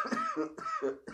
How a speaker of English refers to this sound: I'm coughing. Dude, for real, I'm coughing. Can you hear it?